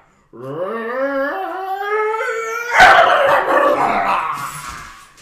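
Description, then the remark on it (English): A dog named Jasper, scared, lets out a long, rising howl, then breaks into rougher, noisier yowling and barking cries for several seconds, loud and alone with no one talking. “Shit, you're getting the dog. You scared the dog.”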